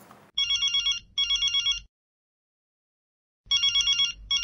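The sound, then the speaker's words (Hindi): A telephone rings as a call is placed and connects, in a classic double-burst pattern, two quick trilling rings, a pause, then the ringing starts again, loud with no voices. “Phone लग गया।”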